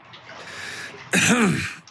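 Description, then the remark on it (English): A man clears his throat once, a short, loud, rough vocal burst that rises and falls in pitch, after a second of quiet background hiss. “A man said behind her, clearing his throat.”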